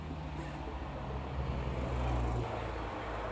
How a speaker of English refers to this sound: Might hear some cars going by.